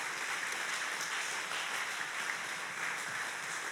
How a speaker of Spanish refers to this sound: Dale un aplauso a Jesús.